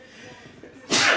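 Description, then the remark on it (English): A single sharp sneeze bursts out, loud and breathy, right after a stretch of soft background murmur. “Bless you. No COVID.”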